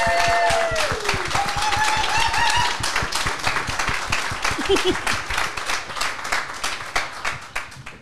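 An audience claps steadily for several seconds, a dense, loud patter of many hands with some whoops and a brief tonal sweep early on, then the applause thins slightly toward the end.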